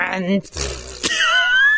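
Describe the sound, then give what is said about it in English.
A person mimics a blown-up balloon being let go with a long, wobbling, fart-like raspberry, sliding from low buzzy pitches into a thin rising squeal, with a short burst in the middle. “I apologize to our listeners for the really extended fart noise, but I promise you I was trying to do the balloon.”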